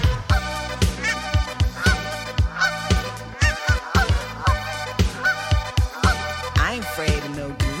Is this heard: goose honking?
yes